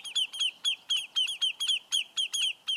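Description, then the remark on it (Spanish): Lesser yellowlegs, shorebirds, give alarm calls at a perceived threat to drive danger from their nests: a rapid, insistent series of sharp, high whistled notes, repeated about four times per second, loud, with no voices. “Pero cuando las aves playeras, llamadas patamarillas menores, perciben una amenaza, arman un tremendo escándalo para ahuyentar el peligro de sus nidos.”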